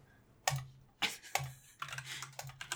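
Close-up clacking of a computer keyboard: three sharp separate keystrokes, then a quicker burst of rapid typing. No one speaks.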